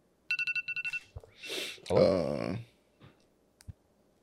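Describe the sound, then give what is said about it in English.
A phone alarm rings next to a microphone: a quick burst of about eight bright electronic beeps that stops abruptly. Rustling and a short voiced exclamation follow, then a few faint clicks. “No, the alarm. I heard the alarm. Oh, because her mic is by the her phone.”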